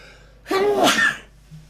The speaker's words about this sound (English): That's a sneeze. Sorry, mate. I couldn't stop it. I tried. I was trying my hardest to stop that coming out, but I didn't. Sorry, everyone. Sorry for the sneezing.